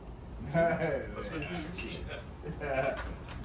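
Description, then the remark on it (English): Glasses clink together a few times in a quick toast, with bright short taps mixed among voices talking and calling out. “Cheers. Salute.”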